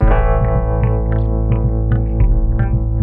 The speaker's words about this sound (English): So wait, what are we hearing here? This is the kelp horn. The bull kelp. Bull kelp horn. Okay. it's a very sick elephant.